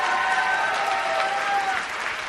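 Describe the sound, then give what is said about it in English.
A crowd applauding steadily, a dense wash of clapping at an even, fairly loud level throughout, with no one speaking over it. “One more round of applause for everybody.”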